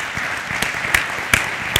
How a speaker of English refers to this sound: So if you guys could, let's give everybody here a round of applause.